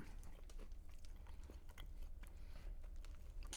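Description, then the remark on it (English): Steady chewing with moist crunches and sticky smacking as someone bites into and munches a chocolate turtle candy made with honey, the mouth noises continuing throughout with no talking. “Everybody loves that we're chewing on the air.”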